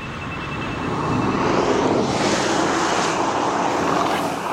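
The fastest electric car in the world, made in Croatia and doing 0 to 60 in 2.5 seconds, whooshes past, a steady high whine giving way to a loud, airy rush that swells and holds, sounding jet-like but smooth.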